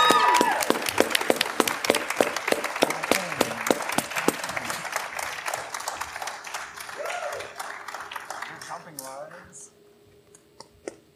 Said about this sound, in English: I just want him to come up on stage so they can clap for him because he built so much of the story.